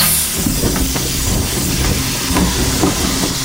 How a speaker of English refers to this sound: Should your craft encounter any deep water, inflatable rafts will open off the side and rear entrances, buoying the entire vehicle.